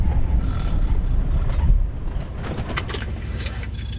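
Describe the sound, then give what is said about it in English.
A truck's engine rumbles, then the low drone drops away as it brakes to a halt, followed by a few creaks, clunks and a brief high squeal of metal settling. “Stop the damn truck, old man.”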